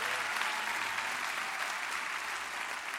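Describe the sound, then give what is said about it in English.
Steady applause from a sizable audience at a morning service at Meadowbrook, clapping for the choir and the praise and worship team, a dense, continuous wash of many hands clapping at once, moderately loud and unbroken throughout, with no voices standing out. “And while we're at it, while we're clapping, why don't you go ahead and give a big hand for the choir and the praise and worship team this morning.”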